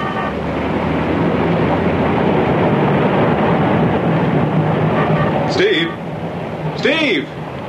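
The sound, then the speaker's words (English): A car engine runs with a steady, loud rumble and hiss throughout, and two brief rising squeals cut through near the end. “I say, this is a jolly nice car.”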